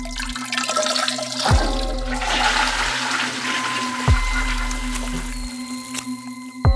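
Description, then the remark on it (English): A toilet flushes in a bathroom with a loud, sustained rush of swirling water, punctuated by a few sharp knocks, over a steady low hum and with no voices. “After he did his business, Alex hesitated, dreading what he might see when he opened the bathroom door.”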